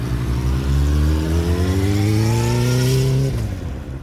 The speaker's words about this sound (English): And I'm heading off on my motorbike now.